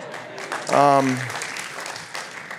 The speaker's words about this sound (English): Oh, we have two people at the sound booth. Let's just applaud them.